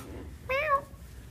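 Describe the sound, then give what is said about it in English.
A single short meow from a male shelter cat, rising then falling in pitch, heard clearly against a quiet background with a faint low hum. “He usually like will meow.”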